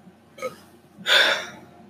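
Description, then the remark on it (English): A short, breathy burp bursts out after a faint catch of breath, fairly soft, fading over about half a second with no talking around it. “I'm going to burp.”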